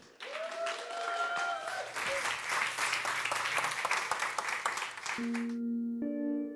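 An audience bursts into loud, steady applause with a few whoops at the start; the dense clapping runs several seconds before a sustained musical chord takes over at the end.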